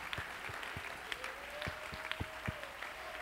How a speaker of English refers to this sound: You don't believe that? That's just a little old happy religious clap.